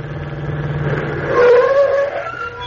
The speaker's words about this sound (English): Wait a minute. Oh, here comes another car. A taxi.